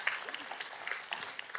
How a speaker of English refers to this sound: This is exciting. Yeah, I see some applause. Some people are excited about it.